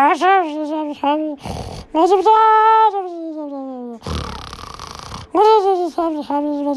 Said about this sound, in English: now your snores are even funny.